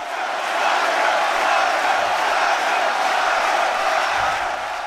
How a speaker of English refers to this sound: The sounds of golf are a big deal to the fans, or so they tell me. Here's how the Masters sounded pre-pandemic. Usually, golfers play alongside packed sidelines full of clapping and cheering fans.